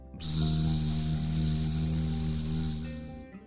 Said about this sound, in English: he heard a terribly loud buzzing sound.